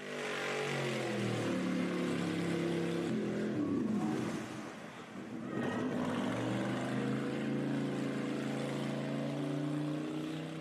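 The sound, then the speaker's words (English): A car engine revs hard and continuously while stuck in mud, its roar dipping briefly midway before climbing back up. Loud, with no voices. “Maybe you got stuck in your car. You know, that happens in Wisconsin, getting stuck in the snow or stuck in the mud like this guy.”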